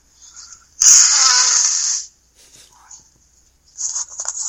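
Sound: person blowing their nose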